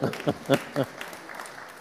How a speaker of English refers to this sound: Yay! Well done. I think they deserve applause. Come on.